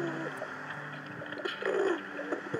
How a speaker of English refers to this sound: Oh, hey there, little pigeon.